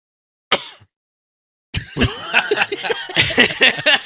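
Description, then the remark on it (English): A short, sharp cough, then after a brief pause a loud, sustained run of harsh coughing bursts, mixed with something like laughter. “That's a great cough.”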